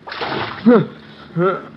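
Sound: water splashed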